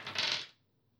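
Bright clatter of dice tumbling across a hard tabletop for about half a second, rolled for a healing attempt in a game, then settling into quiet. No voices.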